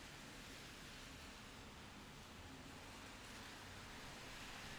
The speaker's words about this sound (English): these aren't normal times, and the very few cars passing me are driving at a nice clip, unimpeded by any traffic. There are no horns honking, no one's yelling. This sounds more like waves hitting the shore on Singing Beach than Massachusetts Avenue.